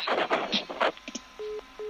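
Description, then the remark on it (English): A phone line after the called person hangs up on a prank survey call: a second of crackly, garbled line noise, then a steady mid-pitched tone beeping on and off in even pulses, two beeps so far. “He's put the phone down.”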